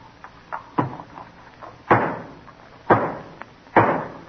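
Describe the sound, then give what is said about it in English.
A hammer drives the final nail into the new state house with a few light taps, then three heavy, evenly spaced blows about a second apart, each a sharp knock with a short ringing decay. No one speaks. “When this nail is home, the new state house will be ready for the legislature.”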